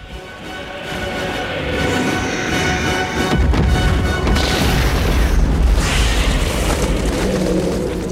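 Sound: hand grenade explosion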